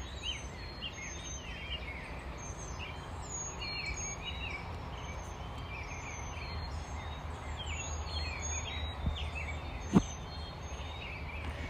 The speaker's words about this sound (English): And the birds are just extra chatty this morning.